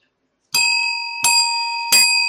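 A bright bell rings three times at steady, evenly spaced intervals, each strike ringing on clearly and overlapping the next. It sounds fairly loud, with no one talking.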